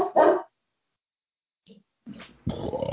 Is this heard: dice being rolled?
no